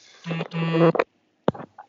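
A phone buzzes twice with a message notification, a short burst then a longer one, each a harsh low hum, followed by a sharp click and a few faint, brief sounds.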